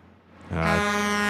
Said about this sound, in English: It's this delayed. It was a Doppler affected truck horn. Yeah, so it didn't. It was delayed. It didn't work as a button.